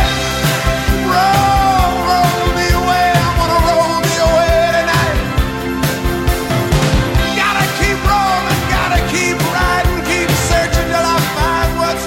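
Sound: rock song playing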